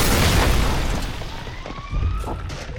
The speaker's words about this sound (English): Dozens of its shimmering green scales were missing, and with the primal pain of an empty belly amplifying its distress, it smashed into the stone wall and broke through the other side.